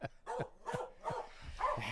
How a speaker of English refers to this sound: that's Mahler, the fake news dog up there barking